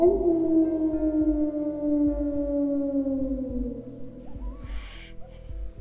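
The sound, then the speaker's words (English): A human voice imitates a wolf howling back, a long, sustained howl that slowly drifts downward in pitch, loud, with a soft rhythmic thumping underneath and a brief breathy noise near the end. “And the wolf howls back.”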